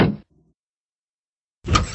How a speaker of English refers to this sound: By the way, it is so weird that you have a giant creaking wooden door in your podcast studio. Maybe get some WD-40 for that.